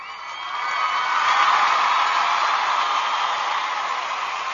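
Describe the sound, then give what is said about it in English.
A steady wash of recorded crowd applause and cheering, used as a sound effect, swells up over the first second, holds at full strength, then eases slightly near the end, with no one speaking. “So we have something that we like to call Mom Applause here at Channel Mom. So here is your weekly Mom Applause.”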